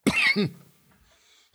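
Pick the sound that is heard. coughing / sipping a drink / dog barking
coughing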